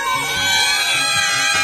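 A loud, continuous chorus of cats meowing as the intro of a song, several high, wavering cries overlapping one another with no pause, and no one talking.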